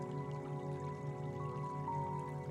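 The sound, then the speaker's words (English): Gentle water of a hot spring pool in a natural setting trickles and drips steadily and quietly over a sustained, humming tonal backdrop, with no voices present. “This hot spring has been a center of healing since ancient times, and it is there for you,”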